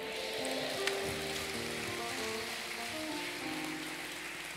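A church audience claps in sustained applause for everyone serving at the service, a dense, steady patter of many hands that holds at an even loudness throughout, with faint held musical tones running underneath.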